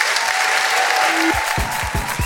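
An audience claps steadily in a dense, continuous wash of applause for two guests after a discussion, with a few low thuds and a faint tone running underneath.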